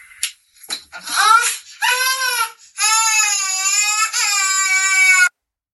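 A small girl bursts into loud, high-pitched crying: a few short gasping sobs build into long, sustained wails in about three drawn-out bouts, with no talking over them.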